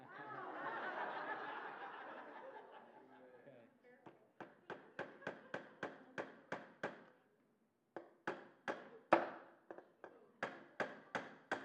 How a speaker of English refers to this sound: I want you to hammer that nail in the board. I will let you position the nail on the board. Okay? Now, I want you to hammer that in, but I want you to close your eyes.